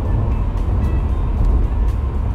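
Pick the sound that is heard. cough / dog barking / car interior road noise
car interior road noise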